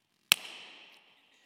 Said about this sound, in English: Did you see the air leave the balloon? No. Well, how did you know it left? The balloon popped, okay.